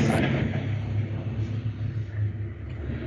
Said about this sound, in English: Okay, just sounds like a car or something went by.